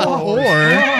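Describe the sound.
A loud horse whinny lasting about a second, its pitch wavering and quavering up and down before trailing off.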